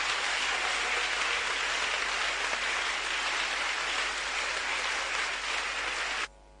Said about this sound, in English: Give Jesus a mighty clap of it.